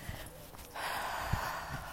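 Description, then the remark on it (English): A long, deep inhale through the nose during a slow warm-up breathing exercise, like yoga or Pilates breathing: a steady, airy rush of breath that starts after a brief pause and keeps drawing in for over a second, fairly quiet, with no talking. “Really long, deep inhale.”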